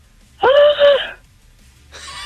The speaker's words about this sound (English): If I could scream, I would. Let's hear you scream and celebrate.